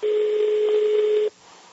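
signal or alarm, telephone ringing

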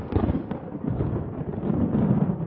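nature, clap of thunder

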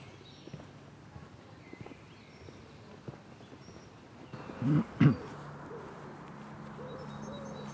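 bird, birds singing

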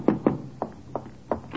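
household object, knocking on a door

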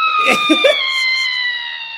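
human body sound, long drawn-out scream

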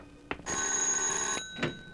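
household object, doorbell ringing

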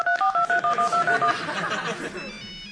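signal or alarm, telephone keypad dialing tones

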